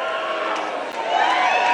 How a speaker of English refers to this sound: Keep booing, little girl.